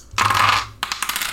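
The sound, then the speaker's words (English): Several six-sided dice, rolled for damage in a tabletop game, clatter and tumble across a hard tabletop, a loud rattling burst followed by a quick series of smaller bouncing clicks as they settle, with no voices. “I always have like one less dice than I need.”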